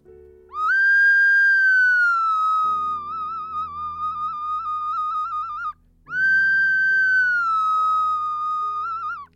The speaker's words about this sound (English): I play a little piece of a Spanish clay whistle. And you may or may not hear the Spanish clay whistle, the ocarina. If you hear the whistle, it means you haven't heard an advert. Here we go.